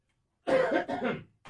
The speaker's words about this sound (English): Excuse me, I must cough.